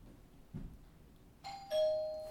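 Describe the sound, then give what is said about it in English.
People's voices imitate a two-note doorbell ding-dong after a quiet moment, the first tone higher and the second lower, held and slowly fading, fairly loud. “Let's all do our own doorbell.”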